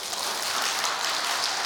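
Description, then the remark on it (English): Steady applause from an audience clapping to show they like Brussels sprouts, a dense, even crackle of many hands clapping that holds at a constant level throughout, with no voices over it. “Applaud if you like Brussels sprouts.”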